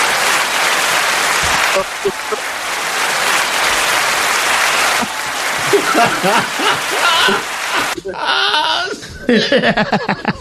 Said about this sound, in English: You know what I'm saying? Make clap noise, for that nigga, make man.